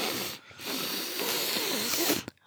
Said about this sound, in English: Okay, if you hear me sniffling a lot, it's because my allergies are killing me right now.